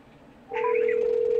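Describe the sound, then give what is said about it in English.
After a quiet half second, a telephone tone starts and holds steady, with a few brief higher keypad-like beeps layered over it at the beginning, as someone dials a call to HR; clear and fairly loud, no talking. “I'm going to call HR real quick.”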